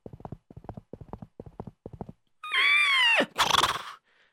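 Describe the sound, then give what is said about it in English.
A steady run of clip-clopping hooves gives way to a loud horse whinny, a high quavering neigh that sweeps downward and ends in a rough, snorting burst. “Some went on their horses.”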